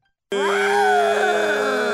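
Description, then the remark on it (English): After a brief silence, someone imitates a jaguar in a contest of sound imitations with one loud, sustained moaning growl, likened to a dying bird: a strained, wavering vocal tone that holds steady for nearly two seconds, with no other talking. “I'm going to go with that that dying bird jaguar.”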